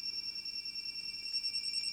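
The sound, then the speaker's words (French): A telephone rings with a steady, shrill electronic tone that holds unbroken for the full two seconds, fairly quiet, with no voices. “Excusez-moi, on me demande au téléphone.”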